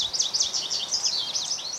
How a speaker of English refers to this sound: They appear to recognize the flight calls of different individual goldfinches, which to our ears sound the same. And when a female and male pair up, they learn to make identical flight calls, cementing their identity as a mated pair.